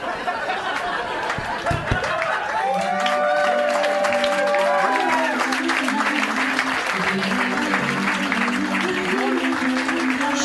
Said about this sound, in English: There's a big applause, and he goes, oh, yeah, and we'll sign.